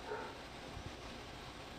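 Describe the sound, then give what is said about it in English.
A dog gives a few faint, short barks and soft whines against a quiet background hum, with no one talking. “My fucking dog.”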